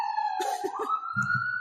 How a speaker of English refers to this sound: Oh, that was an ambulance? I believe so.